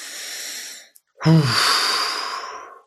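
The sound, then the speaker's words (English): A deep, airy inhale followed by a brief pause, then a long, forceful exhale with a slight voiced rasp at its start, with no talking. “let's slow everything down and breathe.”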